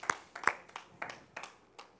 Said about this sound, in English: Can we put our hands together this morning and give God a hand clap of praise today?